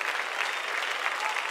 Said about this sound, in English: Let's give the Lord a hand clap of praise before you sit down.